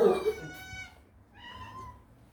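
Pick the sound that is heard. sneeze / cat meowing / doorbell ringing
cat meowing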